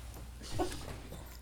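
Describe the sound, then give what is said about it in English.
A dog's squeaky toy gives one short, pinched squeak midway through, moderately loud against a steady low background hum, with no talking. “She had her doogie again, and she was coming over trying to squeak it.”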